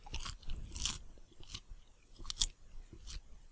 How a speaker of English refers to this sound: Can you hear that? Yeah, it's a very quick crunch, so it sounds thin.